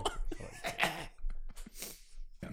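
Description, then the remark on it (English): A series of harsh coughs in irregular bursts, with brief throat-clearing sounds between them and no talking. “Sorry, I was waiting until you were finished. It's one thing I don't have is the cough buttons.”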